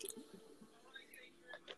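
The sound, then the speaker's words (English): Quiet sipping of water: soft wet mouth noises and small slurps over a couple of seconds, with a faint swallow near the end and no talking. “Let me get some water.”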